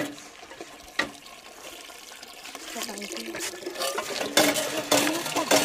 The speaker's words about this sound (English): As well as school, you help your father to farm the family field and your mother to fetch water from the well.